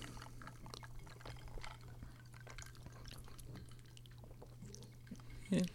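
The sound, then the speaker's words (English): Quiet liquid sounds of someone sipping a fizzy Peeps-flavored Pepsi soda, with small wet slurps and swallows over a faint steady hum, ending in a brief louder gulp near the close. “Let's take a sip of this Peepsy.”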